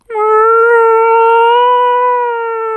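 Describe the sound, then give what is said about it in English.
A voice imitates a whale call with one long, loud, sustained moan at a steady pitch, held for almost three seconds with no other sounds around it. “and the whale was swimming beneath, just letting out a huge”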